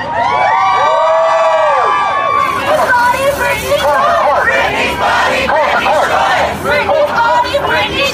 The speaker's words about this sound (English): Y'all, there was absolute chaos outside the courthouse. Britney posted a video of this huge crowd cheering, celebrating. Confetti was falling.